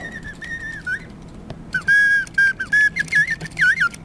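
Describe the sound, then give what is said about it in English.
A small brass slide whistle in a mechanical automaton oriole warbles in short, sliding tonal phrases. Compound bellows supply the air, and a cam system controls its pitch and activation. The pitch glides up and down in quick chirps and trills, fairly loud, over a faint low mechanical hum. “The air flowing from these bellows is delivered to a small brass slide whistle, whose pitch and activation are controlled by the same cam system as the body of the oriole above.”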